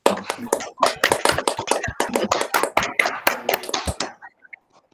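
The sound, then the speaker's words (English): A round of applause from a group for Sonia Kilkenny, state member for the seat of Carrum, a dense, steady patter of many hands clapping for about four seconds, then tapering off into a few scattered final claps. “Can we please firstly all give a round of applause for Sonia?”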